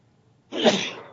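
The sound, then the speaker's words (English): A single sneeze bursts out after a brief quiet moment, sharp and fairly loud, then trails off over about half a second, with no talking over it. “Gesundheit.”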